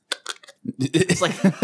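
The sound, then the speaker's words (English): Three or four short, wet, sticky mouth clicks and smacks from a mouth coated in sugar, picked up by a high-definition microphone, followed by a person beginning to talk. “So glad you're sitting in front of the high def mic tonight. We're catching all that. Dude, he got NPR mouth.”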